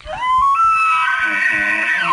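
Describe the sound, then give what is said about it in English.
A single elk bugle: a loud, whistling call that climbs steeply, holds a shrill high note for about two seconds, then drops off at the end, with low rumbling grunts beneath. “Elk bugle.”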